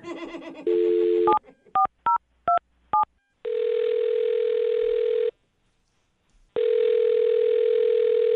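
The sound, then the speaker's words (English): A steady dial tone, then five quick dual-pitched keypad beeps in an uneven rhythm as a phone number is dialed, followed by two long ringback tones separated by a pause. No one speaks. “Okay, I'm going to dial his phone number right now.”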